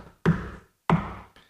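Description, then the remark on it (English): Three heavy knocks by the master of ceremonies on a large church door, slowly spaced, each ringing out with a roomy echo; the third blow is noticeably softer than the first two. No voices. “The master of ceremony again knocks 3 times.”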